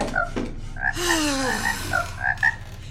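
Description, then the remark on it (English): A frog croaks in a string of throaty calls lasting a few seconds, moderately loud over a steady outdoor background hum, with no talking. “If you're hungry, use your little legs to hop out there and catch some.”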